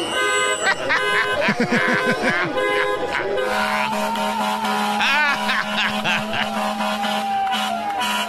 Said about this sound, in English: Tonight I'm here at Gracie Mansion. I will be joined by a few hundred individuals who will be coming here with their vehicles honking their horns in front of Gracie Mansion.